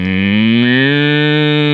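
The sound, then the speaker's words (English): A voice imitates the moo of a Moo Box toy: a single loud, sustained, slightly rising lowing tone lasting under two seconds, with no other sounds. “It was a box that went Moo.”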